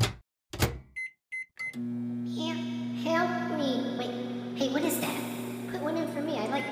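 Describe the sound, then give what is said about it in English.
A microwave, into which Hot Pockets are being put, gives a few short high-pitched beeps, then starts running with a steady low electric hum that continues while people talk over it. “All right, I'm going to put something in the microwave.”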